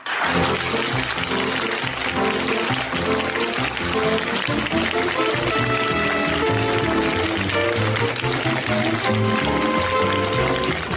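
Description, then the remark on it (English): The bouncy 1970s theme tune of the TV show The Galloping Gourmet plays while a studio audience claps steadily throughout, the dense, hissy applause running loudly under the melody from start to finish. “You see, that's a proper 70s TV show intro because it's got the audience clapping during the playing.”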